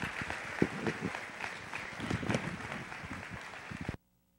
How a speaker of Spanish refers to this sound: Mientras van saliendo los niños, les voy a pedir que les demos un fuerte aplauso.